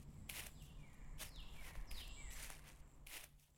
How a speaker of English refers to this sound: My footsteps rise to greet my ears. The satisfying crunch of the curling amber maple leaves bouncing around the shady pathway I saunter down.